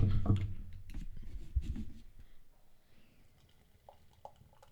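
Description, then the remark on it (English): Beer is poured into a glass in a soft, gurgling rush that lasts about two seconds, then fades to a quiet fizz with a few faint clinks. “Let me pour some more beer here.”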